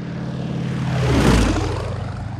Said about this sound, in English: Racing aeroplanes had been built for the purpose, capable of enormous speed, and steered by the greatest intellects of the epoch.